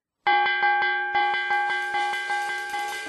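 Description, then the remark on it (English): A bright bell rings repeatedly in a steady, quick rhythm, each strike layering over the sustained ringing of the last, loud with no voices. “B is for bell.”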